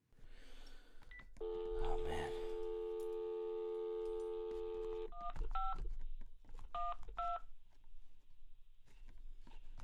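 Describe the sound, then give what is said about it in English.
A steady humming phone tone gives way to a handful of short, bright two-note keypad beeps pressed in an uneven rhythm, with faint thumps and rustling underneath, as a phone number is dialed to call a friend. “Beep, beep, beep. Yeah, there's programs that can figure out what the numbers are.”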